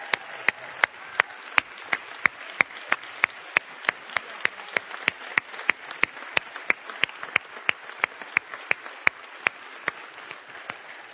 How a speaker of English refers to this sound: And let's give these guys a round of applause here for...